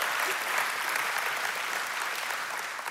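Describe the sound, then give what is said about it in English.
A church audience applauds steadily, many hands clapping at once into a dense, even wash of sound that holds at a fairly constant level for the whole stretch, with no voices heard. “You didn't have to clap, but I appreciate it, all right?”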